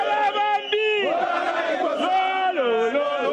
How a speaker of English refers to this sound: In the final moments of a tightly fought race, President Edgar Lungu pulled away from his rival, polling over 1,860,000 votes against Hakainde Hichilema's 1,760,000. The Election Results Center erupted into celebration of champagne, song and dance.